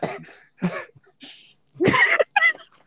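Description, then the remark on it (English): A few rough coughs in quick bursts, with a harsher throaty hacking cluster near the end, separated by brief pauses of quiet. “Damn, got gonna cough in this shit.”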